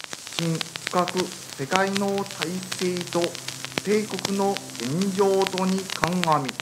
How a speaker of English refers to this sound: People told us to listen to the radio 12 noon. They tuned in. At first, it was just static. Then, a voice.